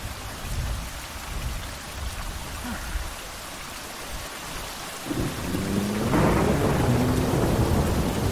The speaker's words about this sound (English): The rain gets harder as something large, not from the booming vibrations that hum through the wet earth into the wood you hug, but the tension in the air as the behemoth swims through the rain coming closer.